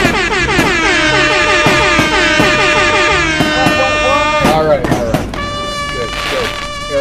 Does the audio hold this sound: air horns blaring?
yes